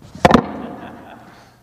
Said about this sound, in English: Now I'm going to blow my nose.